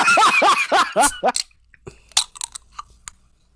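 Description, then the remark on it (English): A voice sounds briefly at the start, then metallic clicks and a short sharp pop with a brief hiss as a grapefruit juniper sparkling water can is cracked open, followed by a few small crackling ticks. “Okay, gotta crack this open.”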